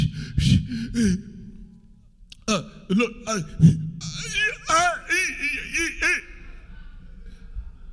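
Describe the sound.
A voice imitates panicked, ragged breathing: a string of quick breathy gasps and whimpering, strained vocal sounds, fairly loud, with no actual words spoken.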